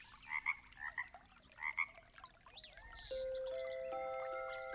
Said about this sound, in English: The lily pads in Sugarloaf Creek, they are gently rising and falling, rocking Mr. Frog to sleep. Mr. Frog, he lets out a deep ribbit of contentment.